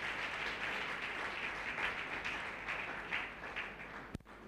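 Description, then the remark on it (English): A church audience applauds together for Jesus in a steady, dense wash of hand claps, sustained and fairly loud, with no voices, ending with a sharp knock just before it fades. “Clap your two hands for Jesus.”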